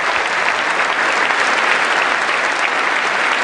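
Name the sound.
audience clapping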